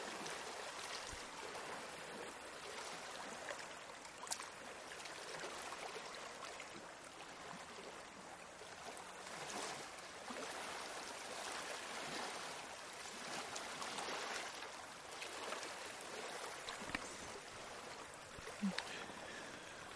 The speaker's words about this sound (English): Just listen to the waves and shut the fuck up.